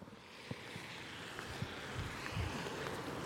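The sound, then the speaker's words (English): Steady wind rushes across a valley toward the high moors of the Pennines at the village of Mossley, on the edge of Greater Manchester, on a cold, wet day, with low buffeting gusts thumping the microphone now and then; no voices, just a continuous, moderately loud outdoor roar. “It's a cold, wet, windy day, and I'm looking out across a valley towards the high moors of the Pennines on the edge of Greater Manchester.”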